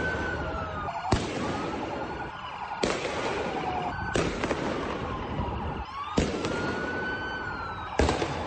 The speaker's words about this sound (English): They were really had good aim, and you'll hear the explosions. These are explosions of fireworks hitting police cars and then blowing up.